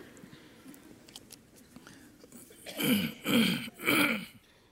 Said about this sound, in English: Excuse me, maybe I can, I don't know if this will help. I need to have a button that I can push so I can really try to clear my throat.